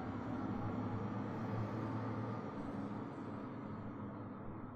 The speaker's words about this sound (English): Surely the street is too small for a truck to be driving down.